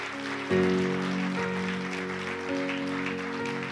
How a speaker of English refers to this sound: Let's give them a good praise clap.